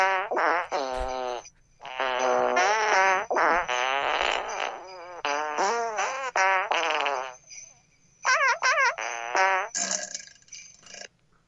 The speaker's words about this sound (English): The title of that button was Jingle Farts.